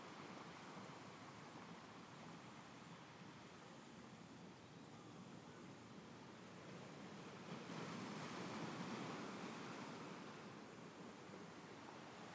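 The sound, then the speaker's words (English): Ocean waves wash onto a beach in a steady, soft roar of surf, with one gentle swell rising and fading partway through. Hushed, with no voices. “From the beach, you begin to hear those ocean waves.”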